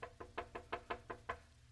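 A rapid series of about eight firm knocks on a door, evenly spaced in a steady rhythm, sounding close and fairly soft, with no voices.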